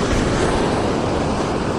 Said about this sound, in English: Old school broadcasting right here, oceanfront. Watching the waves crash, man. Love it.